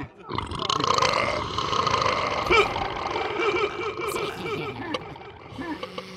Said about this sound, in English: Dude, that burp sounded real cool just now. Who cares, man? Do the burp again. Do the burp.